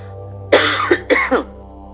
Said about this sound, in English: I'm going to cough, and I'm sorry.